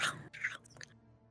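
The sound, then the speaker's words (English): Wet open-mouthed chewing of dense, rubbery crocodile meat: a few quick smacking, crunching bursts in a row, fairly loud up front and then trailing off into a quiet hum. “… totally chews with her mouth open too.”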